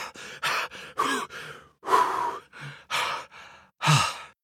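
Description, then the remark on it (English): A storyteller's voice imitates a lion lying on the ground panting hard: a rapid series of loud, breathy huffs and puffs, with no words spoken. “He caught up with Lion, laying on the ground, panting and blowing and puffing hard.”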